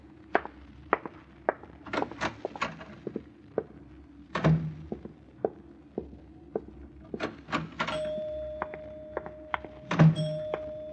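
An elevator call bell, rung by a doctor's receptionist, sounds as a steady, sustained tone for a couple of seconds, surrounded by a busy run of sharp clicks, taps and thunks like a door and office machinery.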